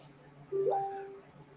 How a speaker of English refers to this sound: It sounds like you're getting hit up on Messenger.